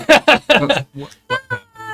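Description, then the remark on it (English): A person imitates the meow of a cat-like creature called a beholder kitty, with a quick run of loud, yowling vocal bursts followed by softer whiny mews and a drawn-out, rising meow at the end. “Who got this beholder kitty?”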